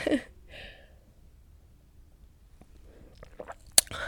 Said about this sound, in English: Did you hear that gulp? Was that ASMR? Probably not.